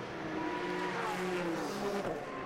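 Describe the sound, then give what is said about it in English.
Loud, steady engine roar from the leading GT Le Mans race cars at speed on the final lap of the IMSA WeatherTech Sports Car Championship round at Long Beach, with harmonic tones sliding in pitch as they pass by, continuous for the whole stretch with no talking. “The leaders coming through, the leading cars in GT Le Mans.”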